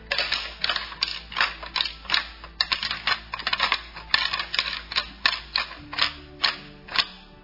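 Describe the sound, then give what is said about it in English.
Two wild deer of about 150 pounds each fighting, their antlers clacking and rattling in a quick, irregular series of sharp, dry knocks that bunch up and pause, with no voices. “That sounds like fighting deer, and you can't make too much noise.”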